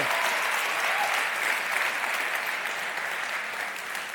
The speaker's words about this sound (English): We have a thing in this church. If we're going to clap, we do it together. Can we just clap together?